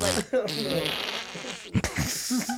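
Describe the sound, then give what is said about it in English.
Someone blows a loud, buzzy raspberry to mimic a fart, a sputtering vocal imitation lasting a couple of seconds, with brief vocal bursts mixed in. “It just sounded like a fart.”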